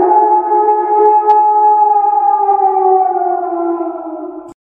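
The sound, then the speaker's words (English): A loud, sustained chorus of wolves howling together, several layered tones holding steady and slowly sinking in pitch for about four seconds before cutting off abruptly. No talking. “You get that old Wolfpack howl and deserve it because you're a mama for having to put up with a crazy fucking kid like me all these years.”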